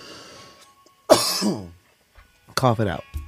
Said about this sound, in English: Cough it out.